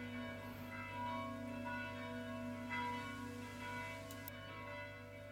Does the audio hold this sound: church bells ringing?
yes